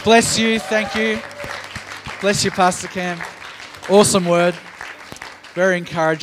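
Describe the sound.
An audience claps steadily, a dense crackling patter running the whole time beneath a speaker who offers thanks and warm praise over it.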